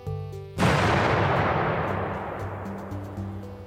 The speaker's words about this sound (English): Once he gets off, you hear this like sound, like a distant explosion, as you see him just disappear quick.